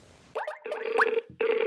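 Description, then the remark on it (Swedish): An outgoing call's ringing tone, a call placed to a hockey league official, sounds in a few steady electronic bursts separated by short gaps, clear and fairly loud, with no voices. “Precis, så att vi tar och ringer honom med tanke på rubrikerna och kring alltså såna här saker som situationsrum och tacklingar och saker.”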